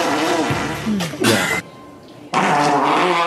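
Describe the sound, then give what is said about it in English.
Loud fart noises: a long buzzy, rattling blast with a wobbling low tone, a short break, then another sustained raspy burst. No one talks. “You know, when you really like to show me a performance before the fart comes out.”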